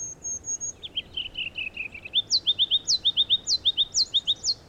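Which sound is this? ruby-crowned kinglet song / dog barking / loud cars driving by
ruby-crowned kinglet song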